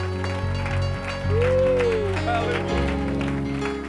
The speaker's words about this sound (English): Come on, why don't you just stop clapping your hands and lift your hands and lift your voice.